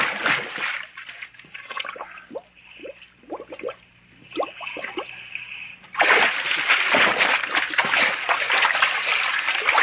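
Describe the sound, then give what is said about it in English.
Water splashes and sloshes in uneven bursts with scattered drips as swimmers struggle in an undertow at a breakwater, then at the midpoint a loud, continuous churning rush of surf and thrashing takes over and stays heavy to the end. “There's an undertow at that breakwater.”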